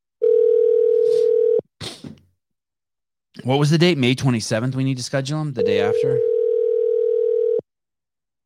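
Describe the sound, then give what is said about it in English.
A steady electronic phone tone hums for over a second as a phone call is placed, cuts off after a brief click, then a person speaks before the same flat tone returns and holds for about two seconds. “I don't have anyone's phone number in here. Six, eight, three, one.”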